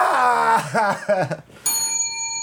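A single bright bell ding strikes sharply and rings out with a clear, sustained high tone, following a short burst of expressive vocal sound.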